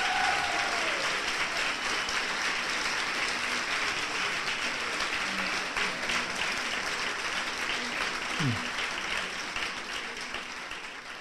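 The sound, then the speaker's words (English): An audience at TheaterWorks in downtown Hartford applauds a segment with Richard Dreyfuss steadily for about eleven seconds, a dense wash of clapping that stays loud throughout and tapers slightly at the end, with no voices over it. “How about a big round of applause for this first segment here with Richard Dreyfuss?”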